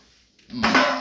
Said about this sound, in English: Jesus. I just knocked over a can of Arizona tea on the floor.